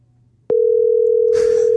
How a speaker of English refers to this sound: Calling Bob Hickman, mobile.